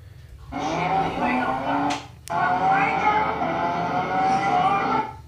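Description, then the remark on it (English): A Ford Ranger Turbo pickup truck and a Camaro sports car race with loud engines roaring and climbing in pitch, broken by a brief sharp pause like a gear shift before the revving resumes. “Here's the one that Joe sent me. Ford Ranger Turbo versus Camaro.”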